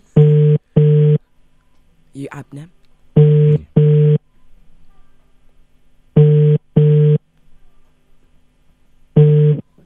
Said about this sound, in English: Right, phone's ringing.